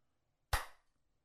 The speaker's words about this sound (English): No, I'm slow clapping you.